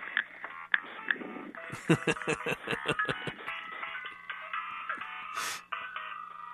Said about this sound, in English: I mean, I'm not even responsible for the tone. I don't know. It's kind of, it's the American version of the British ringtone that I have on my mobile. Sorry about that.